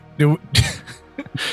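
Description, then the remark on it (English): A rough throat clearing with a short cough, several gravelly bursts spread over a second or so, with a brief hoarse voiced sound at the start and a breathy rasp at the end. “Do not cough on me.”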